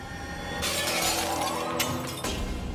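A ceramic cereal bowl is dropped in a breakfast room, hits a hard floor and shatters in a bright, noisy crash, followed by a second burst of clattering shards and a brief tinkling tail. No voices.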